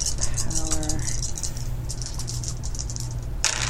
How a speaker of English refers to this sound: Big pile of dice. I bet you're all going to roll good this time.